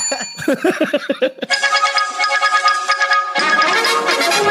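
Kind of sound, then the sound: signal or alarm, bell ringing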